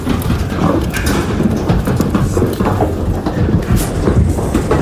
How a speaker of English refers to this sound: And they'll be shipped to a feed yard's going to be in Dixon, Nebraska. Irwin Cattle Company. Here we have cattle being loaded in the trailer.